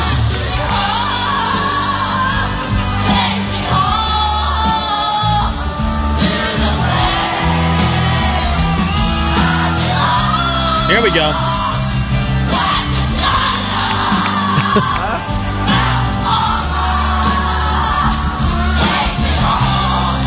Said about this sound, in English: He is dying laughing at what is happening right now as she is getting ready to sing the chorus along with the entire crowd to an all-time great song.